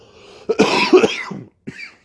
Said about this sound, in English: Sorry for the coughing.